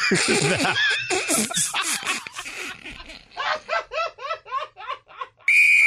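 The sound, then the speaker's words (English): Rhythmic, bursting laughter fills most of the stretch, then a loud, steady whistle tone blown to call a pause cuts in sharply right at the end, short and piercing. “He's usually quicker on the whistle.”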